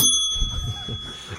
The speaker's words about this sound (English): That's worth the bell. I know, right? Yeah, I really hit that bell.